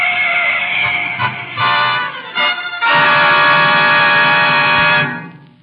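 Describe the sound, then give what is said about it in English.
The horn of an approaching car blares loudly in several short, brassy honks, then holds one long sustained blast before cutting off and trailing away. No voices are heard. “There's a car coming.”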